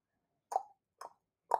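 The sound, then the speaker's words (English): Three crisp tongue clicks, evenly spaced about half a second apart, each a short hollow pop in an otherwise quiet space, made by the wagon driver Yaakov in a story about a horse-drawn wagon. “Shabbat shalom, the people called out as Yaakov clicked his tongue three times.”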